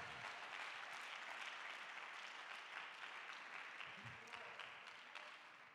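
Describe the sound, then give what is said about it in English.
A crowd claps steadily and densely for several seconds, a sustained wash of many hands applauding together with faint voices mixed in, fading slightly toward the end; a hand clap of praise to the Lord in the morning. “Somebody give the Lord a hand clap of praise this morning.”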